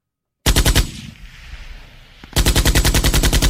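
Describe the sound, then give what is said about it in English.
An M60 machine gun fires two loud sustained bursts of rapid, evenly spaced shots, separated by a pause of over a second where only a faint echoing rumble remains. “You know what that is? M60.”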